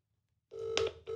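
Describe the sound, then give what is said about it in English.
An outgoing phone call rings out over a speakerphone held near a microphone, a steady electronic ringback tone that starts after a moment of silence, briefly breaks, then resumes. No one speaks. “We're ringing.”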